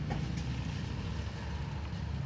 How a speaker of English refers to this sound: That car keeps a hydraulicking. Oh god. I'll let you know if it comes. It's a Kia.